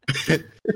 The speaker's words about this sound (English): says as he coughs and rolls over.